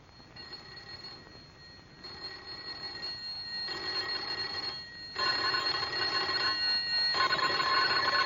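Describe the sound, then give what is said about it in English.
Bright, metallic doorbells ring in several sustained bursts, one after another, rung at houses along a darkening street, each held for a second or two and growing louder toward the end, with no voices. “Together they leave the house, go out into the darkening street to ring doorbells.”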